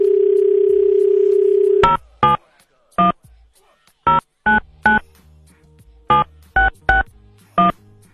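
A steady dial tone hums for about two seconds, then stops as roughly ten sharp touch-tone beeps are punched in, in short uneven groups, clear with no voices, as the Soft Options show on Radio Veritas phones a listener.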